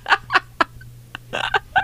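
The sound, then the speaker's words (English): A person imitates a cat with a rapid run of short, sharp meowing yelps, about eight choppy bursts with brief gaps, ending in a slightly longer, strained yowl. Fairly loud. “Meow and then you owl because I'm going to hurt you.”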